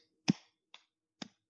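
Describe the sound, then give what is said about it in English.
Three sharp hand claps at a steady, unhurried pace, the first the loudest and the next two softer, each a crisp smack with a brief tail, with nothing else around them; the clapping is because the Orioles won. “You hear that clapping?”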